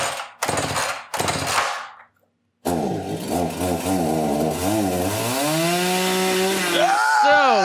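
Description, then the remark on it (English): A chainsaw sound effect played from a soundboard sputters in a few rough bursts, pauses, then roars to life and revs loudly, its engine pitch climbing and wavering, with no voices. “So, Texas Chainsaw Massacre 3-time.”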